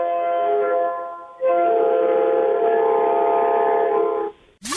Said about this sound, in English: Train horn.